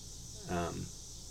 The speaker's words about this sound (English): One of them might be celebrating cicadas, because all of a sudden I hear the cicada drone back in. I am in my studio today, which is to say my recording shed.